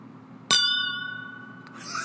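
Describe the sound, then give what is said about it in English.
A single sharp tap on a very full glass gives a bright, high-pitched ding whose clear tones ring on and slowly fade, followed by a softer click and a brief rustle. “Dude, I filled that glass so much that it sounded like a ding.”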